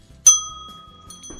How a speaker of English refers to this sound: We've got a bell.